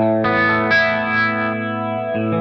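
Guitar chords played through a Dimension C chorus effect on setting one, with some reverb, sustained and shimmering with a wide, doubled tone. A new chord starts about every second, loud, with no talking.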